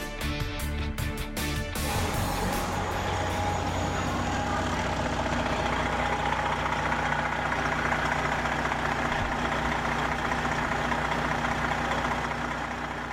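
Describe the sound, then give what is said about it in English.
Buses idle, waiting to carry protesters to a climate protest, with a steady, droning engine rumble that holds unchanged for the whole stretch, a continuous mechanical hum with no voices over it. “And proof that they believe in climate change, buses idling to take them hours and hours.”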